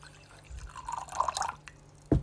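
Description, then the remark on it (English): Water is poured to refill a cup for about a second, a gurgling trickle with a faintly rising pitch, followed by a short knock near the end. Fairly quiet, no voices. “I'm not peeing, it's water.”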